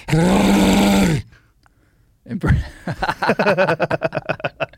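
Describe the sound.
A man gives a loud, sustained, growling roar imitating a bear, lasting about a second, followed by a brief silence and then a run of rhythmic, breathy laughter.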